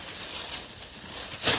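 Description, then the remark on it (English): Crisp, papery crinkling of a plastic bag as it is fetched, a steady rustle that swells into a louder burst of crackling at the very end. No one speaks. “Hold on, I'll get a plastic bag from here.”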